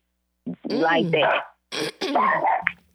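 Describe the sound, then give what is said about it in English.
A territorial male dog barks and growls in two rough bursts, harsh, throaty and fairly loud, with a short pause between them and no talking. “People, excuse my dog. We recording over the phone, y'all.”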